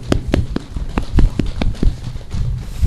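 Audience applause for the speakers at an evening public witness gathering held in the cold, with sharp, distinct claps in a steady, fairly quick rhythm over a continuous low rumble of crowd noise. The clapping stays at an even, moderately loud level throughout.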